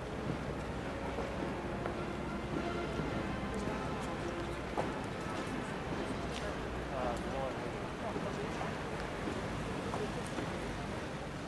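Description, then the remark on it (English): Horse hooves clip-clop steadily as a carriage drawn by six Windsor Grey horses in three pairs, with postillions in state dress riding the left-hand horses, passes in procession, the clatter mixed into dense outdoor noise with wind buffeting and voices murmuring in the background. “There are postillions on the left-hand three horses of the three pairs, making six Windsor Greys.”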